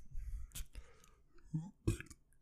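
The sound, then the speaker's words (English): A short, low, croaking belch rises out of breathy, whispery mouth noises and a few sharp clicks, all fairly quiet. “So happy to provide this premium content with you fucking belching as loud as possible on it.”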